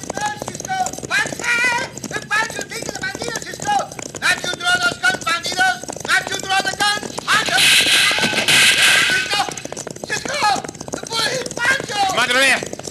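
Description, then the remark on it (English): Galloping hooves pound steadily as horses ride with a cattle stampede, with excited shouting voices over the rumble and a louder, noisier surge partway through. “Right in front of that stampede.”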